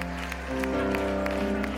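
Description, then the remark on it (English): An audience claps over sustained, steady musical chords, with scattered sharp hand-claps standing out against a continuous tonal backdrop that grows slightly louder partway through. “Y'all clap it up.”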